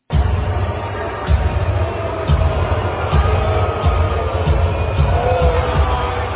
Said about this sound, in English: Let's listen to these boos. I want you guys to hear this. This isn't just a smattering. This is the arena booing the Lakers.